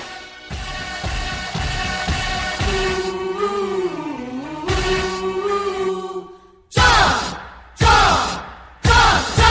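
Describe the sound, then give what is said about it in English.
A crowd of baseball fans chants a long, drawn-out cheer in unison, their voices rising and wavering, followed by three loud, evenly spaced shouted bursts. “Now, you would think, listening as an outsider, that that would kind of sounds still like a cheer.”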